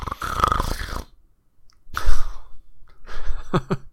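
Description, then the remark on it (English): A voice mimics loud grunting snores: a long breathy rasp, a pause, then two more throaty snorts, alone without any talk. “Ron gave a great grunting snore.”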